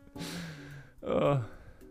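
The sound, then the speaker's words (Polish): Two loud, heavy breaths close to the microphone, a long drawn exhale followed by a sharper, rougher one, like someone deliberately panting to imitate heavy breathing. “Deep breath, że głębokie oddechy również wykonał samemu. Sapię do mikrofonu.”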